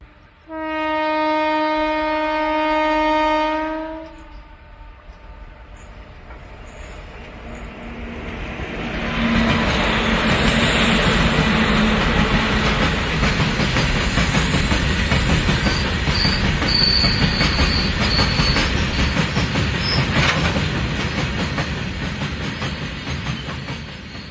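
A train horn sounds for a few seconds, then a steady rumble of a train pulling away builds and holds, with high metallic wheel squeals riding over the noise.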